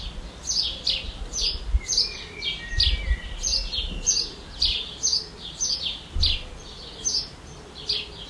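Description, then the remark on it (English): A robin sings outdoors in a steady run of bright, quick, high chirping phrases repeated about twice a second, over a low rumble of wind or background noise. “Do you want me to do the for the Robin?”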